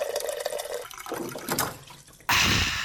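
Water pours and gurgles as a water cooler is filled, a steady liquid rush that ends in a sudden louder, fuller burst of splashing. No voices are heard.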